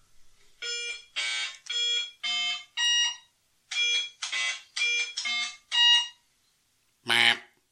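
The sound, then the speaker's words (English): Electronic beeping tones from the Touch Me arcade game, a Simon Says-style memory game: about ten short, bright, harmonic beeps at shifting pitches in two quick runs, then a pause and one final buzzier burst. No talking. “but he found it rather boring, and he was put off by the sounds that came from it.”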